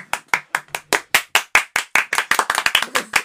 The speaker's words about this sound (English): So, are we going to still clap just to start it officially? Okay.